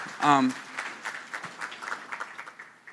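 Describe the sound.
A brief voice at the start, then a crowd claps in a steady, moderate patter of crisp, overlapping hand claps that continues for a few seconds and gradually thins out.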